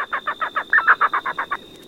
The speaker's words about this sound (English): And that was an elf owl pair. Full moon tonight. So a little bit of wind.